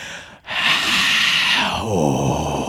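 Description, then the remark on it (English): A voice imitates the roar of a crowd cheering for Rodney Dangerfield, likened to a reversing jet engine: a loud, sustained, breathy rush of noise lasting about two seconds, shifting into a lower voiced groan near the end. “That was the sound. It was like a reversing jet engine.”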